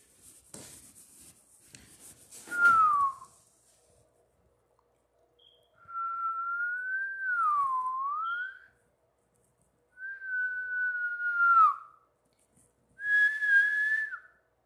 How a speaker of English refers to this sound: I don't even know why I'm whistling. It's just something that I do. Sounds nice, I guess.